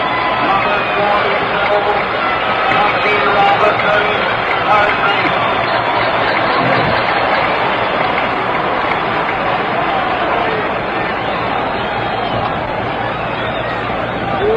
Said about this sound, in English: Jackie Robinson gets a round of applause.